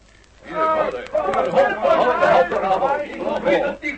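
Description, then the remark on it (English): Several men of a submarine crew shout and call out at once from the sub after hearing a shot, their overlapping voices forming a steady, unintelligible clamour that rises after a brief quiet start and carries on for a few seconds. “Somebody calling out from the sub, Biggles. They heard the shot. Ignore those shouts, von Stahlhein.”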